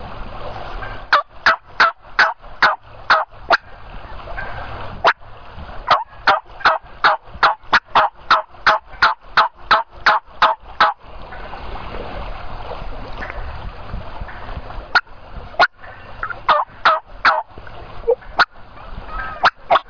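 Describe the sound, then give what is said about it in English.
Turkey hens call during a turkey hunt in quick, sharp clucks, repeated in steady rhythmic runs with short pauses between bursts, over a low background hiss. No talking. “As bossy as this one is, you'd think all the other hens would be coming in here to see what was about to happen.”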